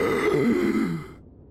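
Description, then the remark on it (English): A single voiced gasp for breath, fairly loud, a strained rasping intake that lasts about a second before trailing off into quiet. A voice performs the gasp. “gasps for breath, and his eyes flicker open.”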